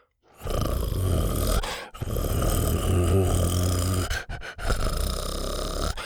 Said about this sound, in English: Buck panted and growled.